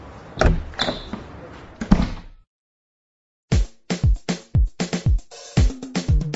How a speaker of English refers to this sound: With this banging door, we end the 4th episode of this drama, Family Affairs, How to Become a Political Player.